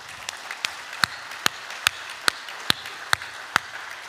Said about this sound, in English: That's more than they clapped for me in the whole year of 2023. So that's good. got a lot of applause today. Well deserved.